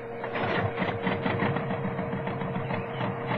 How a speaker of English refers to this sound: Start up tractor motor!